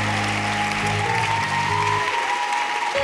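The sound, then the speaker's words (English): A crowd applauds steadily for about three seconds for Apostle Mose and Rev Maar, a dense, even wash of clapping with a faint sustained tone and low hum underneath. “So everybody, I want you to clap your hands for Apostle Mose and Rev Maar this afternoon.”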